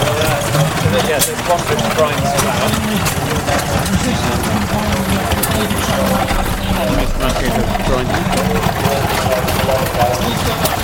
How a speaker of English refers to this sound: Water pumps. All engines, just amazing. Smell the diesel, smell the petrol. They're all sitting here just pumping away, and it's sort of, it's a real niche collector's corner.